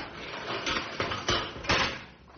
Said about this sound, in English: Open the cage door, Sam.